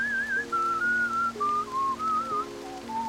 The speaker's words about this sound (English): Roland and Leon were laid side by side, and their living friends sang to them, and … whistled the old songs to Leon.